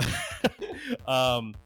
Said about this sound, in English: Cough, cough, the voice of the DM.